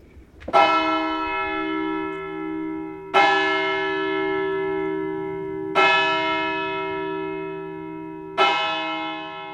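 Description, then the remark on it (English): A church tower bell in Pontito tolls four slow, heavy strikes about two and a half seconds apart, each rich metallic ring sustaining and overlapping the next. No voices, just the resonant tower bell. “And there's the bell tower in the church that Frank wanted us to see.”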